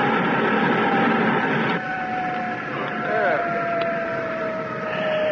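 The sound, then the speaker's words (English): A spaceship's retro rocket fires as a brake, with a dense, steady roar and a thin whining tone that sags slightly in pitch, the noise abruptly shifting character partway through before rumbling on. “Now, before we get too far from the workshop, Druggett, I'll try the retro.”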